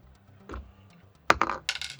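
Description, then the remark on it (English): A ten-sided die is rolled onto a hard surface: a soft bump, then a sharp clack followed by a quick run of bright, rattling bounces that settle within a second, with no talking. “Is there a key in there? Roll me a d10.”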